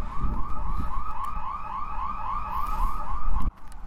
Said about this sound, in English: In my snooping around the back of the building, I crossed an invisible threshold and was duly reported. In my exploration, I seem to have set off a security alarm snooping around the back.